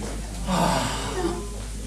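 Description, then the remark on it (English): A dog named Landy sniffs at a person: a few short, airy snuffling bursts through the nose, fairly loud, over a low steady background hum. “Landy's like sniffing me.”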